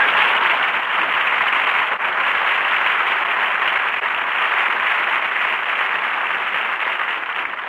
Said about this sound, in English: So here he is, folks. A man the whole world is anxious to hear, but on the other hand... Never mind. Jack Benny, applause.